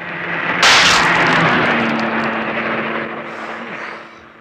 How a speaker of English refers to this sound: Who was in that car? Who fired the shot?